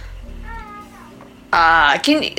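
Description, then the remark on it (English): A cat in a house meows: a faint, drawn-out mew early on, then a loud, wavering cry followed by a shorter call. “As a little aside, I'm like house sitting and cat sitting, and this cat is quite vocal, very cute but vocal, and he was quiet before, and I was like trying to keep like one hand kind of patting him at all times to keep him quiet”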